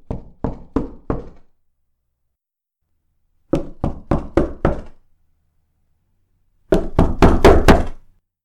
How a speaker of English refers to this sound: Then came the knock at the door.